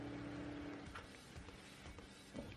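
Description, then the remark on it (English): A police car in a film drives by with a steady engine rumble and dense road noise, a low droning tone fading early on, continuous and fairly loud with no voices. “Fucking got himself a cop car. Look out.”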